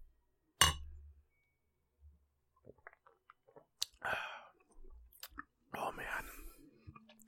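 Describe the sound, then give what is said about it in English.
A single sharp clink of glasses of Pliny beer in a toast rings out near the start, then quieter sipping and swallowing noises follow with a few faint murmured voices. “All right. Cheers. Salute.”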